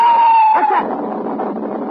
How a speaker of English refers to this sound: Got some kind of tail adjustment that cuts the wind and sort of screams.